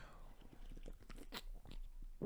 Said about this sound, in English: Sorry, I'm going to take a sip of my beer for actually the second sip of my beer since I first started this.